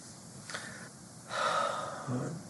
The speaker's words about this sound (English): And relax. Breathing new you in through your nose and old you out through your mouth.